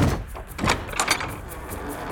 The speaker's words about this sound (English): He reached the palm leaf cave and kicked repeatedly at the door.